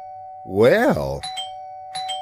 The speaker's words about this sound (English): Well! The doorbell works. I actually fixed it. Boy, that's cool. I guess I better install this, because right now at the door I just have a couple of loose wires. If somebody tried to push it, it would...